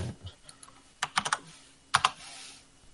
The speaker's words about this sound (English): Listen how aggressively he types it. Right. Because hitting the keys harder makes it show up bigger on my screen. These buttons harder to make it send faster.